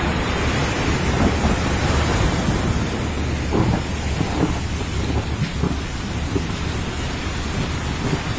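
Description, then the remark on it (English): Deep, rolling thunder rumbles over a steady wash of ocean surf, mixed together on a white-noise sound website, a loud, continuous roar with low booms swelling and fading throughout. No voices are heard. “Now add some thunder to the mix.”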